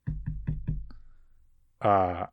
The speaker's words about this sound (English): You know, knock on wood.